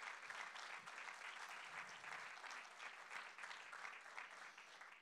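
Steady, sustained applause from a crowd giving a hand clap for those who give young people opportunities, a dense crackle of many hands clapping at even loudness for about five seconds with no pauses and no voices standing out.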